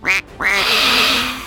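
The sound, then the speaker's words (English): A duck gives two loud, harsh quacks: a short one, then a long, raspy, drawn-out one that sounds agitated. No voices. “And an angry, venomous duck.”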